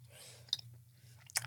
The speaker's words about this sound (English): Isn't it good though? Well, it's very good. It's so chewy. That's so good. It's just marshmallow and chocolate. What's bad about marshmallow and chocolate?